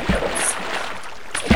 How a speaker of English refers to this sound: Oh, all I can hear is splashing.